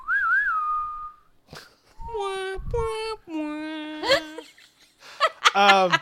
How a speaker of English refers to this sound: And I start whistling and go.